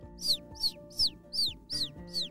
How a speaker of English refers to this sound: It's a bird. It's like she's trying to come in.